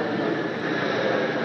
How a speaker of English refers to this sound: Are you on this plane? Are you listening to me on this plane? Flying overhead? That's a low-flying plane.